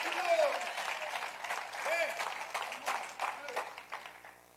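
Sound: audience applauding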